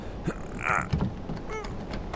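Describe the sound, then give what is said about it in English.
A stiff, jammed door to a boat's captain's quarters creaks and groans as it is lifted and forced open, with a drawn-out squeal midway and a few thumps and scrapes, moderately loud. “The door feels jammed.”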